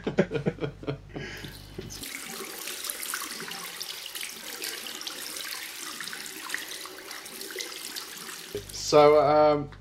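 A tap runs with a steady rushing stream of tap water for several seconds, briefly preceded and followed by people talking.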